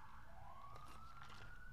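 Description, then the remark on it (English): A loud emergency vehicle siren wails in a city, its tone sweeping steadily upward over the rumble of traffic, with no voices present. “The sirens in this city are so fucking loud.”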